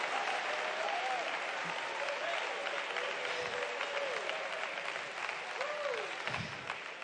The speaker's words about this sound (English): Can you praise him right now in the name of Jesus? In the name of Jesus. Oh, let's clap our hands unto the Lord.